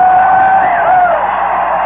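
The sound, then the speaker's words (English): A baseball stadium crowd at an evening New York Mets game cheers in a steady, loud roar for about two seconds during the eighth inning, with sustained yells and whoops rising above the dense wash of voices. “Well, this crowd has had a great time this evening.”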